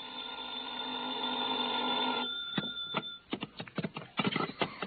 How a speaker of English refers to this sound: I went back to my hotel and hit the sack, and I must confess I slept later than usual the next morning. I was still in bed when the phone rang.